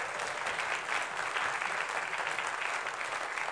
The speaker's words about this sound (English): So I just want to say thank you to the worship team. Can y'all give them a round of applause?